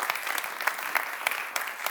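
An audience applauds a group of volunteers, many hands producing a dense, crackling patter with scattered sharper claps rising above it, sustained at moderate loudness throughout without voices.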